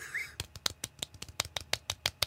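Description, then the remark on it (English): Soft, polite golf claps from a few hands, made as a clap track, about a dozen quick, crisp pats in a steady, slightly uneven rhythm, fairly quiet overall, preceded by a brief faint chirp-like tone. “Let's do a golf clap, clap track.”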